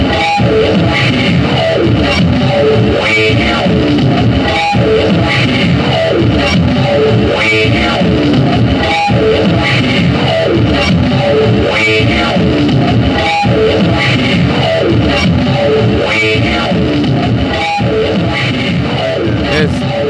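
Loud, dense experimental rock with heavily distorted, effects-laden guitar droning and churning in a steady pulse, repeated sharp hits punctuating the wall of noise, and no clear drums or vocals.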